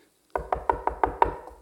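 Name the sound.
knocking on a door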